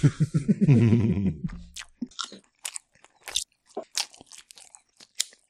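A short hummed vocal sound gives way to close, loud crunchy chewing of a hot pepper: a string of sharp, irregular crunches right up against the microphone.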